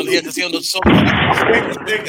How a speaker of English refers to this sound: Well, can I get a gunshot for that one, please?